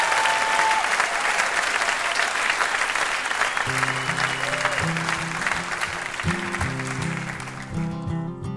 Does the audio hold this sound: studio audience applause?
yes